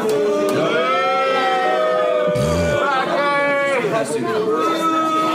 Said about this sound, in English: Who's booing? That table? People all around are booing.